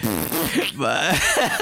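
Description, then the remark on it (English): A loud, sputtering fart-like rumble meant as a thunder effect, seemingly made with the mouth, with wavering, blubbery tones running continuously for under two seconds with a brief break midway. “That's a terrible sound effect, …. Are you sure? That sounds like somebody had stuck a microphone up their ass and farted.”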